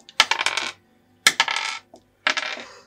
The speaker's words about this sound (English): How do you roll 4 dice? The first one fell off.